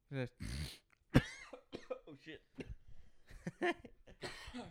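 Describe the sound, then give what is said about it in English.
A couple of sharp, harsh coughs burst out near the start, followed by a man talking loudly and excitedly while the coughing fades away. “Fuck out of here with that fucking cough.”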